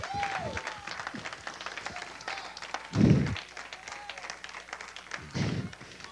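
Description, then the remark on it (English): A crowd claps steadily as praise to God in a dense, continuous patter of many hands, with two heavier low thuds breaking through partway and near the end. “Give God a good hand clap of praise.”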